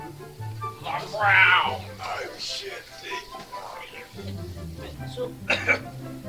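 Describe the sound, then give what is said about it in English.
A person makes rough, guttural growling noises with their voice, a few raspy throaty bursts rising and falling over several seconds, loudest near the start, with no clear words. “I'm gonna growl.”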